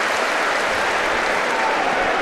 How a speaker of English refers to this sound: He's just noticed himself on the big screen. Great to see him here. Gets a big round of applause. The Welsh wizard, legend of our game.